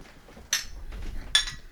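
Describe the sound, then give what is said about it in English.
Two bright glass clinks ring out, spaced under a second apart, as glasses are touched together in a birthday toast, against a faint low murmur. “Happy birthday, Brother Roy. Cheers to that. Cheers.”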